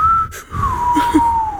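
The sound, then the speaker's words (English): A person whistles a long, steady tone that drifts slowly downward in pitch, imitating the whistle of wind, with a brief break near the start and a little background noise. “And it's like, dude, somebody it's like me whistling.”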